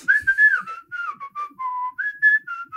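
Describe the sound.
A person whistles a bouncy, quick melody of short and sustained notes, clear, with no talking over it; the tune heard at the beginning and throughout the animated film Robin Hood.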